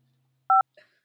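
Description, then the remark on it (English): A single short voicemail beep, a steady two-toned electronic tone lasting a fraction of a second, followed by a faint brief blip, over a low hum. “You can please leave any messages or requests after the beep.”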